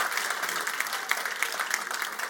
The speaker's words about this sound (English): Come on, church, clap your hands this morning. That is awesome.